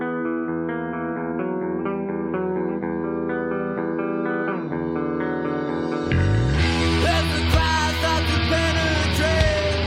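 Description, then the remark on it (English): A subdued, eerie guitar intro from a 1999 live concert recording, the opening song of the show, plays sustained, reverberant notes for about six seconds, then swells into a louder, brighter, distorted wash of sound. No voices are heard. “Starting with some very classic, spooky guitar. Mm-hmm. Pretty subdued. Almost sounds acoustic.”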